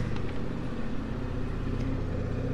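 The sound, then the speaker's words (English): A low, steady engine drone from an old, much-rebuilt tractor driven by an old man rumbles throughout, thick with deep harmonic chugging, holding fairly constant in loudness without voices. The tractor's exhaust is strong; it passes by ancient city walls. “And the exhaust from the tractor is remarkably strong.”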